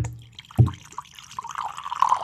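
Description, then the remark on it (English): A Dewar's 15 mini bar bottle of liquor is poured into a glass at the microphone inside a house: a soft clunk, then a steady trickling gurgle whose pitch rises as the glass fills. No one speaks. “I'll pour it in the mic and we'll see if we can hear.”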